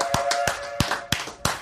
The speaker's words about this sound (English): I thought everybody clapped. You know the wicked part? You were part of that.